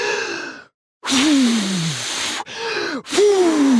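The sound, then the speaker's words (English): A voice imitates the North Wind blowing as hard as it can at a little girl, with a series of loud, breathy whooshes, each carrying a moaning tone that slides downward in pitch, with a brief silent pause after the first gust. “With his arms akimbo, the North Wind puffed out his cheeks and blew as hard as he could at the little girl.”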